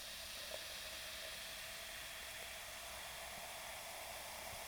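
A soft, steady fizzing hiss of ginger ale being slowly poured from a can, with tiny crackles of popping bubbles throughout, quiet, with no one talking.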